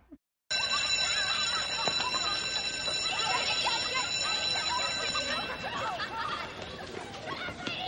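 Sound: bell ringing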